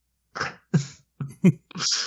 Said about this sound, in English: That is the spoiler cough.